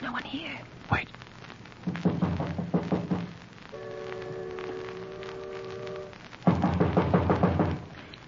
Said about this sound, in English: We've got to go down a dark passageway to the door. And Margot, after we enter the passageway, we mustn't speak. Just go up to the door, and I'll knock.